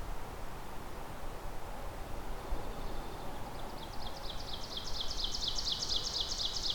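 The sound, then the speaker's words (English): An ovenbird's song in a mature forest rises out of steady background hiss, a rapid series of repeated two-note phrases that grow steadily louder over several seconds, outdoors; a second ovenbird also sings. “There's our ovenbird. And another one.”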